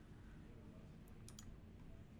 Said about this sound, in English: Damn, we keep clicking pictures.